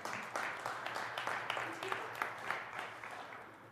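An audience claps together in a steady, dense burst of applause, many overlapping hand claps blending into a continuous crackle that holds at an even loudness, easing slightly near the end.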